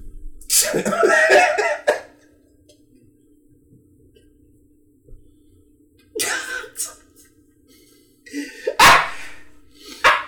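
A dog barks loudly in three separate harsh bursts, the first longer and the last two closer together, with quiet stretches and a faint steady hum between them.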